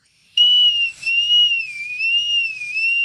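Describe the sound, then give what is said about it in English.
A metal bosun whistle, as used by the bosun on Navy boats for signaling, sounds a sustained, piercing high-pitched tone with a gentle wavering warble. It starts abruptly and holds steady for about two and a half seconds with no talking. “In modern times, you have the bosun whistle, which was used by the bosun, one of the officers on the boats in the Navy, and it's made out of metal.”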